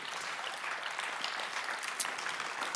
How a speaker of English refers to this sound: Now for that part, I've asked Jana Highholder. Beautiful name. And let's give a big round of applause for Jana Highholder on stage.